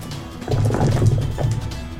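Six six-sided dice (four chunky gold D6s, a Fireball Red D6 and a Titanium Mike D6) are rolled for damage, rattling and tumbling across a surface in a dense burst of small clicks and knocks over a low rumble lasting about a second before settling. No one speaks.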